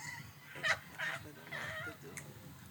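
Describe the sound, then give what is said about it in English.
A flock of birds calls in a loose series of harsh, honking cries, several overlapping bursts over a low rumbling background, fairly loud. “Look, the bombs flocking together. Look at the birds.”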